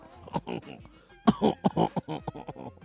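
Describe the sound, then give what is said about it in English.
A person coughs and gags repeatedly in harsh, strained bursts, as if choking on a chicken bone gone down the throat, with a short pause before a louder, more frantic series of hacking coughs. “chicken bone drop down his throat. … start cough.”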